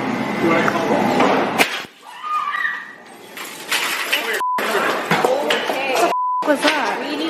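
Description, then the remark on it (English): During a shooting at Queen and Augusta, a bullet punches through the window of a Wendy's restaurant with one sharp crack, followed by a brief tinkling shower of glass, then a return of busy background noise and murmuring voices. “that sound you hear of the glass is a bullet,”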